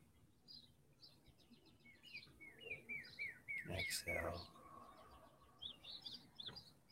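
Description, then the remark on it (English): Birds chirp and twitter steadily outdoors, heard through open windows, a lively chorus of repeated tweets, with a brief louder rustle midway through the quiet background. “I have the windows open today. You can hear the birds.”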